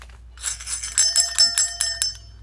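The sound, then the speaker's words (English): A small bell rings in a quick series of bright, tinkling strikes over about two seconds, fairly loud, with shimmering overtones and no voices. “Take your bell.”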